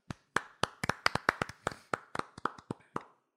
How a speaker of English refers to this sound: Hey, I know we're a big clapping podcast, which is getting a little odd to a degree.